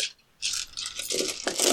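Dice clatter and tumble across a hard tabletop in a quick burst of bright, rattling clicks, with a brief pause before a second flurry of rolling and settling. Close and fairly loud, no voices.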